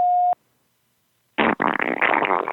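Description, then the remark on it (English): A brief electronic beep, a moment of silence, then a loud, sputtering, flatulent-sounding vaginal queef, made on demand by a woman and left on a phone line, lasting about a second, thin and muffled as if carried over a telephone line. “heard our pleas and called back, and she left a queef on the phone line.”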